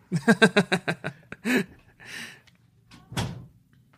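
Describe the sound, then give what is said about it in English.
A small cat door rattles through a quick run of clattering knocks, then shuts with a few thuds and a scraping slide, ending on a final solid bump. “And I'm going to close the cat door.”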